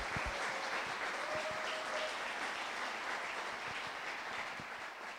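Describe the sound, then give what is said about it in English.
Steady applause from a roomful of people, entrepreneurs among them, fills the space, a dense wash of many hands clapping at once that holds evenly for several seconds and eases off slightly near the end. “So again, quick round of applause for all the entrepreneurs in the room, even those that aren't pitching.”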